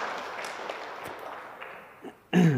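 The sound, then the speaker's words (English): An audience at a church service applauds church volunteers and group leaders in a steady, dense patter of many hands clapping for about two seconds, thinning slightly before a loud voice starts talking at the end. “Let's give these guys a nice hand of applause.”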